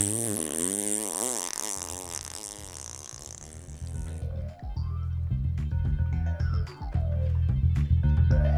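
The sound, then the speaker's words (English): A hippo farts loudly and wetly, a long sputtering blast that wavers in pitch before breaking into splattering, watery bursts and gushing noise, continuous for several seconds. “You say hippo farts.”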